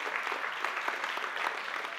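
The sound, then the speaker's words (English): A church audience claps for Jesus together in a steady, dense wash of applause, many hands overlapping into continuous crackling noise that holds at an even level for the whole stretch, with no voices standing out. “Come on, give Jesus one more clap.”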